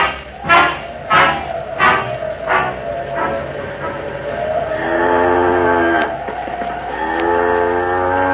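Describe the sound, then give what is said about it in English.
A cow named Bess lets out two long, drawn-out moos that carry steadily for a couple of seconds each, after a handful of short, sharp calls at the start. “You know, Henry, she isn't a bad cow, is she?”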